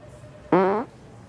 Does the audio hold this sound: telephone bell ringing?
no